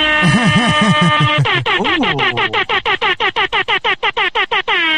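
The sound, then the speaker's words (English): Two blaring air horns clash loudly, one wavering in pitch while the other blasts in rapid, choppy bursts that speed into a stuttering rhythm before ending on a sustained honk. “Dueling air horns.”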